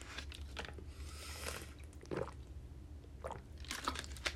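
Someone drinks water: a few soft gulps and wet, squishy swallowing sounds in irregular bursts over a low background hum, with no talking.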